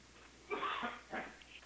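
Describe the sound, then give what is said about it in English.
A quiet sneeze, a breathy burst followed a moment later by a shorter second one, with no talking around it. “Bless you again”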